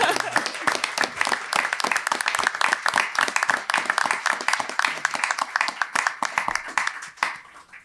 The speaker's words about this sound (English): First, thank you so much for your generosity to the university over the years. Actually, that deserves a round of applause.